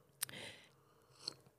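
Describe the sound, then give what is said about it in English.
A quiet slurping sip of fair-trade organic coffee from Coffee Traders, a local spot in downtown Austin, drunk from a mug, with a sharp onset and a brief hiss of drawn-in liquid, followed by a small click as the mug is set down. “Let me take a sip of this real quick.”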